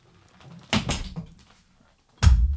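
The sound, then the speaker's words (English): A door creaks and swings shut with a couple of knocks, then after a short pause a heavier thud lands as it closes firmly. “I'm closing the door.”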